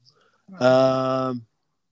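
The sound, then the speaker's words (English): A single drawn-out meow from a female cat, fairly loud, holding a steady, buzzing tone for about a second before cutting off into silence. “Don't start, kitty, please.”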